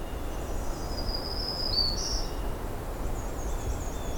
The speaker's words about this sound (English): And here's some distant American robins and a common yellowthroat.